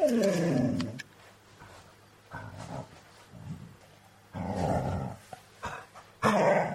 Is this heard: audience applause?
no